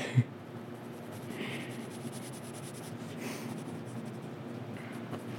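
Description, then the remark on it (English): Quiet scratching and rubbing of Copic markers and pencil crayon on paper during drawing and shading, a steady textured hiss with brief, slightly brighter strokes now and then, and no talking. “this is not turning out as awesome as I'd like it to, but I often like to mix Copic pens with pencil crayon.”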